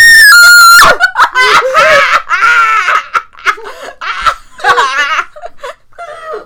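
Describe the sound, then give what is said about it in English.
A loud, piercing high-pitched scream lasting about a second gives way to bursts of cackling laughter, with several voices laughing in choppy, overlapping peals. “I like that we got your high-pitched scream and my witch laugh together.”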